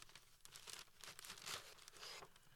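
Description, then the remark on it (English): Green gift wrapping paper crinkles and crackles in quick, irregular bursts as it is unfolded and torn open, a busy rustling that swells and fades over a couple of seconds with no voices. “It's lovely green wrapping paper.”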